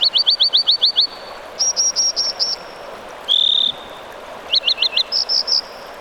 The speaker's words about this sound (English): An American dipper calls across a rushing mountain stream. Its rotund, stone-gray body bobs rhythmically up and down, its feet firmly planted. The bird's white feathered eyelids flash like a semaphore.